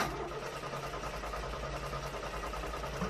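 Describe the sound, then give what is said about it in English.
A car engine cranks over and over with a steady, rhythmic churning but never catches, fairly loud for a few seconds with no voices; a car with no gas being started at 9 a.m. in Puerto Rico after Hurricane María. “And first thing in the morning, 9 a.m., I went to my car.”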